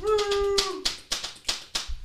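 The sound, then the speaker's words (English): A short, sustained vocal tone gives way to a handful of sharp, evenly spaced hand claps, roughly five, loud, applauding a co-host, with no crowd filling in around them. “Round of applause for co-host Cam.”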